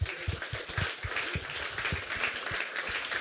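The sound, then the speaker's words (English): A live audience applauds a man for being best dressed, many hands clapping steadily in a dense, continuous patter that holds at an even level throughout, lively, with no voices standing out. “Round of applause for him.”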